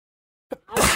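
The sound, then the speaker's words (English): A single loud sneeze: a short breathy intake, a brief pause, then a sharp explosive burst of air that carries to the end, with no talking. “Oh, excuse me. Bless you.”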